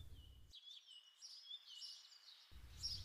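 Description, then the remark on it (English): Birds chirp and twitter continuously in the open air, with a thin, steady insect buzz running beneath, all fairly quiet. “Suddenly, the birds and insects buzzing could be heard clearly.”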